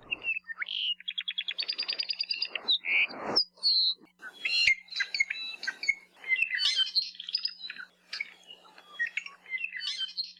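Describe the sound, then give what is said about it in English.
An Apapane, a crimson Hawaiian honeycreeper, sings a varied, complex song of rapid trills, buzzy notes and clear whistles, with fast repeated chip series and sharp clicks, loud with no talking. “The Apapane is a direct descendant of a flock of finches that somehow flew from Asia over nearly 3,000 miles of open ocean and landed in the Hawaiian Islands more than 5 million years ago.”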